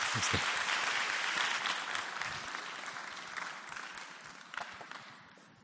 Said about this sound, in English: Would you open your hearts and let's just welcome him up with a round of applause.